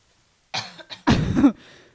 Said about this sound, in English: I woke up this morning and I was coughing like how you were the other night.